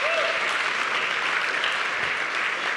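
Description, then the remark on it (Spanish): An audience at a Spanish-language sermon applauds loudly to praise God, a dense, steady wash of many hands clapping that holds at full strength throughout, with a brief tone sliding at the very start. “Si lo cree, dar un aplauso fuerte, Señor.”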